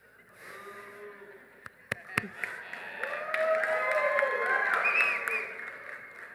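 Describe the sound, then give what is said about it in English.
A church audience claps while voices whoop and cheer over it. A few sharp claps ring out early, then the sound swells into steady, fairly loud applause that holds for several seconds. “I'll be praying for all of you who clapped.”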